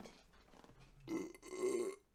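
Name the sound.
burp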